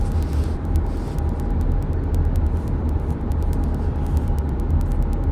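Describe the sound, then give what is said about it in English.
Dense rush hour traffic rumbles steadily with a heavy low engine drone, passing cars and trucks blending together, and repeated short clicking or ticking sounds scattered throughout. “And of course there's some road rage going on, people being cut off, and yep, rush hour traffic.”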